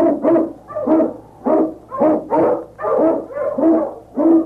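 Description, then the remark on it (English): King, an Eskimo lead sled dog in the Yukon, barks and howls in a steady run of loud, tonal yelps, about two per second, with no voices. “King, the swiftest, strongest of Eskimo lead dogs, blazes the trail through storm and snow for Sergeant Preston as he meets the challenge of the Yukon.”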